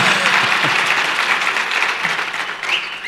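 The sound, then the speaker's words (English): An audience claps steadily for about three seconds after a presenter finishes speaking, a dense, even patter of many hands with a few faint voices mixed in beneath it. “When he finishes, he gets a clap.”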